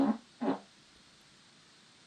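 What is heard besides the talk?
fart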